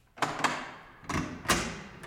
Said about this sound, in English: Go ahead, John. Open the door.